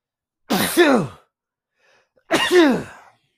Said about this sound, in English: I'm sure someone said bless you, so thank you.